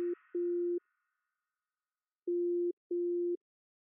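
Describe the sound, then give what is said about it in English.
A repeating telephone hold beep: steady, low-pitched electronic tones sounding in pairs with a long silent pause between, opening with a brief click. No one speaks. “That beep is going to get annoying very quickly.”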